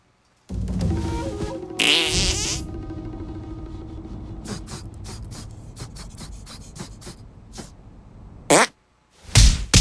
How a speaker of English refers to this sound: I'm going to teach you a fart called the Sneaky Squeaker. It will become your greatest ally. Don't believe me? Try and block my attack.